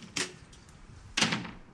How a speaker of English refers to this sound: You go near the door and you have a bracelet on your wrist. Yes, this one. And that opens the door? Yeah. Okay.